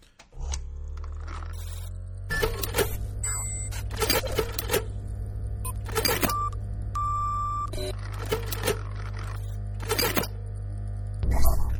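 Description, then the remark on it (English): The Fake-O-Meter's receipt printer runs in repeated short, raspy mechanical bursts, with a few brief electronic beeps in between, all over a steady low electrical hum. “The printer is broken. I'm going to have to put another roll of printer paper in here.”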